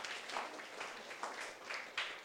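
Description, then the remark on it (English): An audience claps, a soft, steady patter of many hands with a few sharper bursts poking through, fairly quiet overall and with no voices over it. “Come on, you can clap. You've got to clap.”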